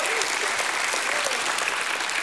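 An audience claps steadily in a dense, continuous wash of applause, giving God a hand clap and a shout of praise, with faint voices calling out beneath the clapping.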